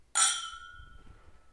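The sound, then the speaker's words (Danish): Glasses of barrel-aged beer clink together once in a toast, a bright ringing strike whose tone lingers and fades over about a second, with faint low rumble beneath and no talking. “Men lad os nu lige prøve. Det bliver spændende. Skål. Cheers.”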